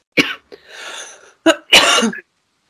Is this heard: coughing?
yes